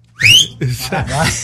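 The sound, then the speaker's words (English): A person lets out one loud, sharp whistle that slides upward in pitch, followed straight away by a burst of voiced, talk-like sounds. “And it goes really quiet and you hear this whistle and it's me.”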